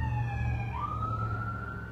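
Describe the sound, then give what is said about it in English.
An emergency vehicle siren wails steadily outside, its tone stepping up in pitch partway through, over a constant low rumble of traffic. No one speaks. “Here come the sirens, too.”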